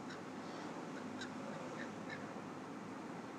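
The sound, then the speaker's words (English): A few harsh crow caws ring out in short, scattered bursts over a steady wash of outdoor background noise. “Cue crows.”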